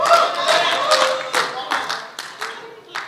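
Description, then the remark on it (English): An audience applauds with a dense patter of hand claps, loud at first and then thinning into a few scattered, sharper claps as the applause dies away. “There's a lot of clapping this morning.”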